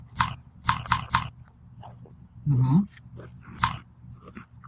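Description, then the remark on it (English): Crisp crunches of someone leaning into a microphone and biting into a Zagnut candy bar, orange, crumbly and not covered with chocolate: a quick run of three or four sharp bites, a brief murmured voice, then one more loud crunch. “Make sure you lean into the mic so we get that good crunching sound, fellas.”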